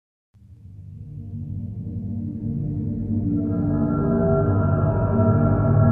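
Ambient video game soundtrack music opens after a brief silence with a deep, sustained drone that slowly swells and thickens, higher tones joining midway as it grows louder. No voices.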